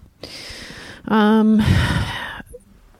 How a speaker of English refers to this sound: she is breathing into the mic very heavily, and she won't do that if she has the headphones on.